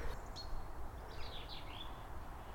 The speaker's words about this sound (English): there's a chaffinch, first chaffinch song of the year. Get a bit closer to it.